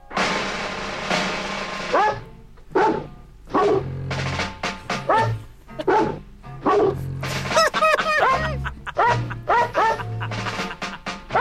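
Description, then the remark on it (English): A record of dogs barking and yipping in a rhythmic, melodic pattern, with the barks arranged like a tune over a steady low backing, loud with no talking. “By the way, back to this dog record.”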